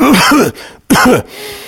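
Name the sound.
imitated coughing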